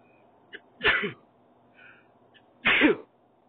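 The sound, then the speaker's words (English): Two sharp sneezes a couple of seconds apart, each preceded by a faint catch of breath, fairly loud against a low background hum. “It caused me to sneeze.”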